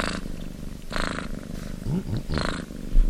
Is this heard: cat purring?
yes